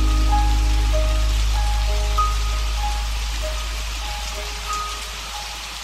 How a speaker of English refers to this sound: So if life has left you kicking up dust, keep listening, keep looking up, and grab your umbrella, get ready to sing in the rain.